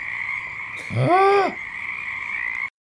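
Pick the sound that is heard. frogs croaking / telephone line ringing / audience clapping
frogs croaking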